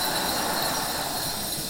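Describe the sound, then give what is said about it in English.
A dense, steady wash of many hand bells ringing at once, bright and metallic, sustained loudly without pause and with no voices; the bells are rung in thanks for spouses who lifted people up during the year. “I'm ringing really loud.”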